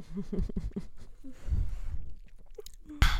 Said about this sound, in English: Another sip.